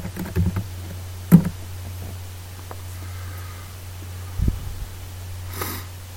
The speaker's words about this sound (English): And we'll SSH to the server and take a look at some files. Do a little typing here.